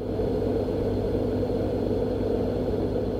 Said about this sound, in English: The reason that this white noise is useful in that circumstance is that white noise is basically sound that's covering all of the possible sounds that your ears could hear.